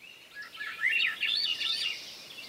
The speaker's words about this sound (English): There's the flute-like song of a Swainson's thrush, a bird now wintering in Central and South America, maybe as far south as Bolivia.